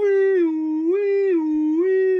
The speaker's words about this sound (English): A siren wailed.